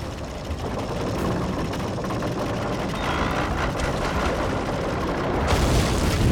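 A steady mechanical grinding drone from the burned-out bearings of the boat Orca, in enhanced audio just before its blow-up, runs throughout, dense and rough, with a harsher, brighter scraping edge creeping in near the end. No voices are heard.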